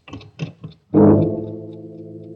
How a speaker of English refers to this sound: turns and picks the pillow off his bed as the clock finishes striking 12.